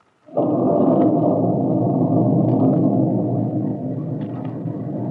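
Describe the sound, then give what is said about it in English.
Thunder breaks suddenly into a loud, deep, continuous rumble that rolls on steadily for several seconds, heavy, with no voices. “With the breaking of the storm, the light in the kitchen went out.”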